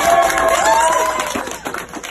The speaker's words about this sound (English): And then wheeling him down the hallway, lined with cheering staff, recorded here by the hospital.